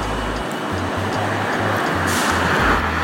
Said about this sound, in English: And, you hear the cars whizzing by here and there.